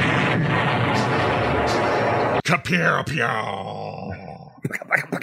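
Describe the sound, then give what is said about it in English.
A loud, rumbling stock footage explosion sound effect roars for a couple of seconds with dense crackling debris, then cuts off abruptly as people start talking over a quieter background. “All right, here's the most stock footage freaking explosion sound of all time.”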